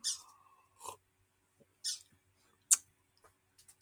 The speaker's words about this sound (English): Sorry, the birds distracted me.